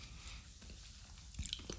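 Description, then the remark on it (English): Crunching and chewing of a crunchy chocolate candy with lightly salted nuts, with a few sharp bites standing out over steady, moist mastication noises, with no talking. “It has a nice crunch.”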